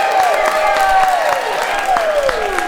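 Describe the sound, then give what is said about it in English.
A crowd claps steadily as judges award a blue ribbon to Bent Paddle Brewing Company, with sharp scattered hand claps running throughout, while drawn-out falling whoops or whistles rise over the applause. The sound stays fairly loud and even for the whole stretch. “And the crowd goes wild.”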